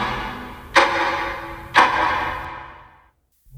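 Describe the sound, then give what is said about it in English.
A mantel clock ticks twice, about a second apart, each sharp click leaving a brief ringing tail that fades into near silence. No one speaks. “The clock on the mantel ticked in a steady, soporific beat.”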